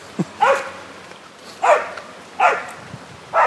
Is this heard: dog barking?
yes